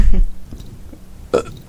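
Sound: burp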